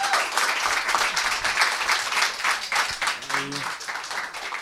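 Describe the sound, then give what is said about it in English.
An audience claps steadily for several seconds, a dense, even patter of many hands with no one speaking, and a brief voice calls out over the applause near the end. “Everyone give a wonderful round of applause for”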